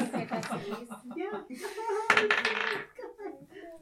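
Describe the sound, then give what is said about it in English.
Dice are randomly rolled to check for encounters, clattering and tumbling across a hard surface in a brief, rattling burst, partly mixed with voices talking and a bit of laughter. “Don't mind me just randomly rolling dice.”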